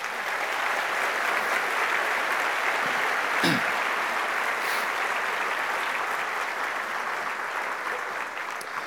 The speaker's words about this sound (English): Will you give him a big round of applause?